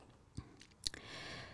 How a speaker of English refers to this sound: So you have to click the button and then the program will automatically generate for you inspirational quote that you can use for anything. So I'm clicking the button now, guys, and let's see what I will get.